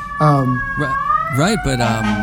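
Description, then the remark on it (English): A fire truck siren, probably a toy, sounds a steady high wail with buzzy, harmonic bursts that swoop up and down in pitch several times over about two seconds. “Sorry, I just had to hit the fire truck.”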